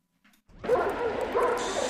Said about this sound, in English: Shut that fucking dog up. Shut up.